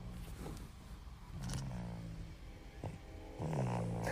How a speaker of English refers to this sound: I wonder if they can hear the baby snoring. Listen quietly.